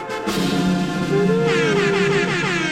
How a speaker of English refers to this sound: Air horn.